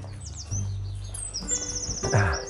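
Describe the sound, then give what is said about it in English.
A pigeon calls with a short, low coo near the end, while high-pitched bird chirps and tweets flutter throughout over a steady low outdoor rumble. “Yeah, that's a pigeon.”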